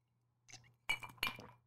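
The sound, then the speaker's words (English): A nearly empty drinking glass clinks a few times: a light tap followed by two sharp, bright chinks with short ringing tails, heard alone over a faint low hum. “This cup is almost empty, or this glass.”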